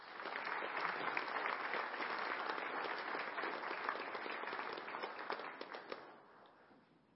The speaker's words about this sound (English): So please give these two a round of applause, if you would, please.